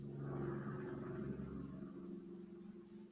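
A truck's unmuffled engine brake, in the snowy season, gives a low, throaty, rattling drone that holds steady and then slowly eases off over a few seconds, with no voices.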